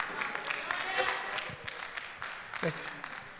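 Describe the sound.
An audience claps in a dense, steady patter of many hands for a few seconds, with a few brief voices calling out over the applause.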